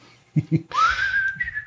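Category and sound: human body sound, person whistling a tune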